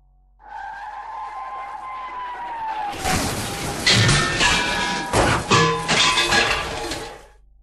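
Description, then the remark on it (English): A truck roars forward with a whining, screeching tone for a few seconds, then drives straight into a car park's steel shutter with a loud metal crash, followed by several seconds of clattering, banging debris. “Virat started the truck and drove straight at the steel shutter.”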